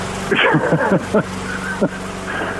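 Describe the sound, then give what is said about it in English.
A lawnmower engine drones steadily at a low, even pitch throughout as a lawn is mowed, with a voice briefly speaking over the running motor. “Are you currently mowing your lawn?”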